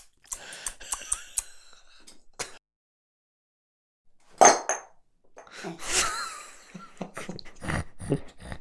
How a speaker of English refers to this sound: He just dropped his phone into his glass. Into my whiskey glass.